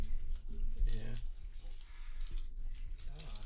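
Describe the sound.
Wet, crunchy chewing of candy right against the microphone, with irregular smacking and squishing bursts and a few brief voiced murmurs mixed in.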